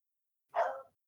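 A single loud dog bark, one short sharp woof after a moment of silence, with no voices around it.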